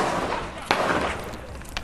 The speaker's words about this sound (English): It sounds like gunshots.